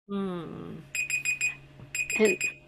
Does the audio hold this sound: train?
no